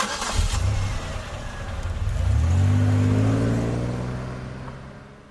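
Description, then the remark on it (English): A woman gets in a car; its engine turns over and catches, then revs up with a rising, throaty drone as the vehicle accelerates away in a hurry, loud before gradually easing off. No one speaks. “She's getting in a car.”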